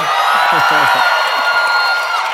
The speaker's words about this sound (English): So, Tim, a strange amount of applause. Tim is popular. That's exciting. That's exciting.